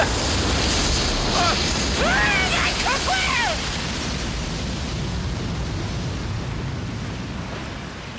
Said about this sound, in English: Oh my god, it's a tidal wave. I know what it is.